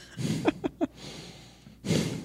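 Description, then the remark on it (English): Loud, heavy nasal breathing from a man: a long noisy exhale, three quick snorting sniffs, then another rough, drawn-out breath after a short pause. “he'll get annoyed that I'm annoyed at the breathing”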